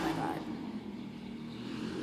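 An old car engine rumbles and revs outside, a steady low, throaty drone that holds at fairly even loudness throughout, slightly stronger at the start.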